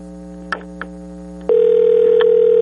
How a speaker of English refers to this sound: can you put that on so we can hear the ring? We want to hear the ring live on the air.